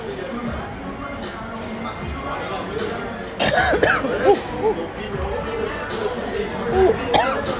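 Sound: coughing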